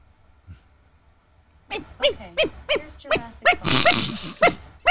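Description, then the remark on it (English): A small dog's high-pitched yaps, played by an Alexa smart speaker asked to bark like a little dog, come in a quick series of about eight sharp barks after a quiet start, with a breathy burst in the middle. “Alexa, bark like a little bitty dog.”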